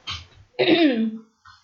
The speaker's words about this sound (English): And, excuse me, I'm just having a cough.